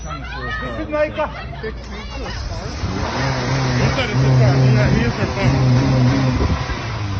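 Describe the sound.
A car engine idles and then revs with a steady low drone growing louder midway as a woman steals the car, while several people talk and chatter excitedly over it.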